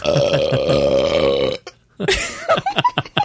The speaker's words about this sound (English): This is the most burpy episode of the Going Deep.